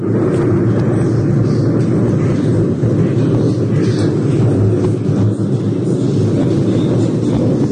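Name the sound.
thunder rumbling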